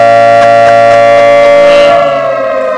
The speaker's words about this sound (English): There's the siren.